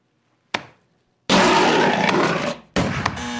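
A bear roars loudly in a long, raspy growl lasting over a second, then bellows again, with a short sharp thud before the first roar. No one speaks.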